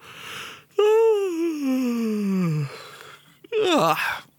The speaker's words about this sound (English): After that big yawn, I played Abyss, Build to Destroy.